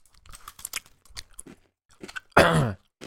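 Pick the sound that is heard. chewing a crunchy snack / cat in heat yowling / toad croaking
chewing a crunchy snack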